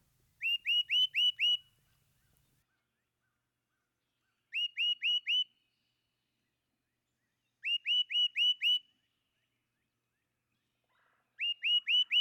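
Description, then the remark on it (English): A great crested titmouse gives clear, loud whistled calls: quick bursts of four or five rising notes, repeated about every three seconds against an otherwise silent background. “Witness the clear, sweet whistle of the great crested titmouse.”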